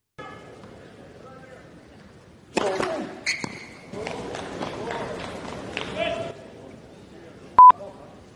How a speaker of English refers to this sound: Now, that didn't need to be beeped there, Gibbo, because people thought he was swearing at a bloke.